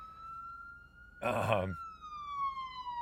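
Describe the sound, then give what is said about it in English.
A steady wailing siren from a passing emergency vehicle, its pitch sliding slightly lower as it moves away, with a brief burst of someone talking over it midway. “You're about to hear a siren go by.”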